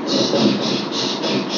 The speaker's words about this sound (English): The train is really booking now, clacking and clicking